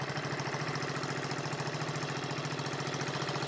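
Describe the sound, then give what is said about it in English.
A small engine running completely on hydrogen runs steadily on its own, a continuous low rhythmic chugging with a buzzy, pulsing tone and no speech. “If I slow it down or speed it up, so I have an engine running completely on hydrogen.”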